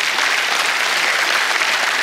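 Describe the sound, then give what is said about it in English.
A church audience on Mission Sunday applauds steadily after a prayer for its travelling pastors, a dense, even wash of many hands clapping at once, sustained and fairly loud for the whole stretch with no voices standing out. “You can clap.”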